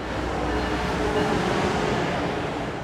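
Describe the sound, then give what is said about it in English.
A steady, loud rumble of a passing train in the city of Providence, a dense low-end roar with constant mechanical clatter and hiss, unbroken for the whole stretch, with no voices. “it's no surprise that the biggest contributor to noise in the city is transportation. From bustling highways to rumbling trains.”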